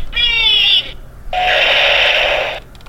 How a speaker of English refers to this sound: Let me play some sound effects. Oh, no, that's doors.